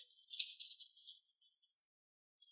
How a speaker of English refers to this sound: It sounded like he rolled too many dice. He rolls 2D something,